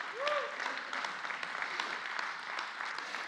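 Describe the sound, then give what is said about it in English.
A church audience gives God a hand clap during a sermon, dense overlapping hand claps filling the whole stretch at an even, moderate loudness, with a brief rising-and-falling whoop or cheer near the start. “Give him a hand clap.”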